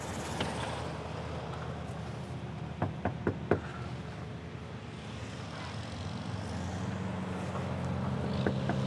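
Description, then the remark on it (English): Four quick, sharp knocks on the door of a one-story house in a small neighborhood land in a tight cluster, moderately loud against a steady low outdoor rumble of wind and traffic; no one speaks. “As I knocked on the door, I peered inside the window a bit and saw someone walking around.”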